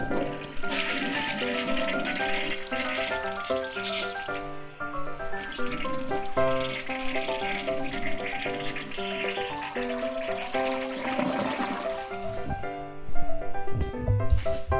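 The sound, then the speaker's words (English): A urinal flushing in one long, steady rush of water for about fifteen seconds, fairly loud, with whistling, humming pipe tones running through it and no voices. “That was the longest flush I've ever dealt with in my life.”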